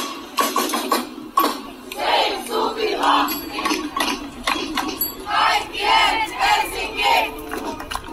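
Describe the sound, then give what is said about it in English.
A large crowd of demonstrators marching through an old industrial area in central Helsinki, protesting plans for an entertainment and hotel complex, shouts "Save Suvilahti and everyone's Helsinki" together in rhythmic, repeated bursts, voices rising and falling in loud chant-like waves that carry on throughout. “In early summer, demonstrators marched through an old industrial area in central Helsinki, shouting, "Save Suvilahti and everyone's Helsinki."”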